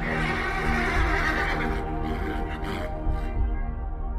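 A horse neighs loudly, a long, quavering whinny that fills about four seconds, with no voices alongside it.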